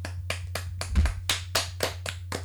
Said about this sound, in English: That's the first clap out we've had on this podcast, so you should be honest. Is that a thing? Let's do a clap out!